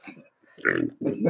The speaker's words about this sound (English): I'm going to isolate that burp and use it later.